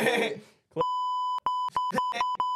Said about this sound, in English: It's just something I'd like to beep, forget. Wait, where's the beep? Where's the beep button?